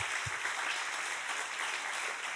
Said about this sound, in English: That's pretty amazing. Eso sí es tremendo, ¿no? Yeah, I think that deserves a round of applause.